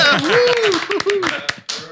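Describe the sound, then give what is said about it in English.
A small audience at the Blender Institute claps in a loose, uneven patter of sharp hand slaps while voices whoop and cheer over the applause, celebrating the third anniversary of the Blender Cloud. “Now you can clap.”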